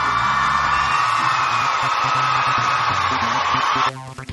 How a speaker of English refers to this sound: Just showing up in the ISC, one of our newest DJs. Let's see if we can give him a nice round of applause really quickly.